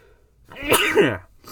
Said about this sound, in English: It's always funny to hear people sneeze. You know what I mean? Because people like sneeze, make different sneeze sounds. I feel like mine's pretty normal, but I don't know. Maybe you're like, that was a weird one.